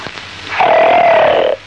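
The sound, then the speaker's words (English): A voice imitates a delicate snore, pretending to be asleep: a single breathy, wheezy tone of about a second, fairly loud and steady, with a slight wavering pitch, then stops abruptly. No talking during the sound. “How does one do a delicate snore? Like this, approximately.”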